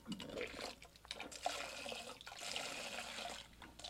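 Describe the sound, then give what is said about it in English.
About a gallon of water gushes out heavily and continuously, splashing and rushing loudly, with a broad churning hiss that surges and eases a few times over the few seconds. “That's like a gallon of water. Do we need another bucket?”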